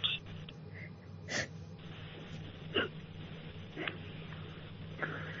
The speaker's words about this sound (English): Heavy breathing.